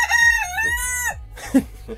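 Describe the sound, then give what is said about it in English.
A rooster in a studio crows once, a loud, drawn-out call with a rising then falling pitch, followed by a few short clucks and rustling. “Is that a sound effect? Is it a real rooster?”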